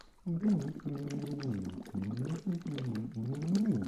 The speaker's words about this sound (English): and we're blowing into bottles of water, aren't we